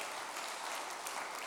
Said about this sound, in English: You should be clapping your hands by that word alone.